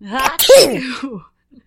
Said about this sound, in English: The room was relatively quiet. And as we're all listening to our teacher, all of a sudden I feel a sneeze welling up inside of me. There's no holding it in.